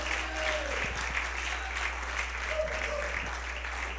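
An audience applauds with dense, steady clapping that holds evenly throughout, a couple of faint vocal whoops rising briefly above the crowd over a low constant hum.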